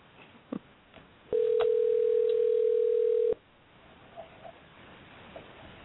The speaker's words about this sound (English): She might not be available. We'll let it ring just a couple more times.